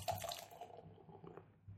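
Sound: beer being poured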